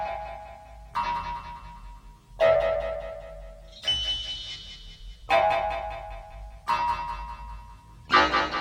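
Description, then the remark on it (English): The slowed-down, echoey mechanism of the Trumpton town clock: seven heavy, ringing metallic strikes at a slow, steady pace, each tonal clang swelling and decaying into a reverberant hum before the next. “Okay, that was the very slowed down and echoey mechanism of the Trumpton Town clock.”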